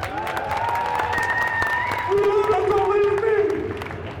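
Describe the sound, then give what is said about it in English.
An audience applauds steadily throughout, dense clapping mixed with cheering and whooping voices that rise and hold over the crowd noise. “Give some love, y'all.”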